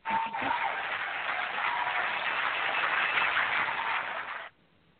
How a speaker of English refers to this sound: Is that Sorry, like a background applause or something? Foreground applause, really.